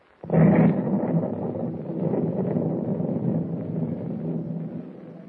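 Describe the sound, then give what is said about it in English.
A sudden heavy blast erupts and rolls straight into a loud, sustained low roar that churns on for several seconds: explosions aboard the Clara M., an old ship, with flames shooting up from the hold. No voices. “explosion after explosion shook the ancient vessel and flames shot up from the hold”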